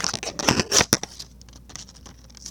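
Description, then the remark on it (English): Scissors snip several times in quick, crisp bursts during the first second, then fade to soft, faint rustling with no voices. “That's scissors.”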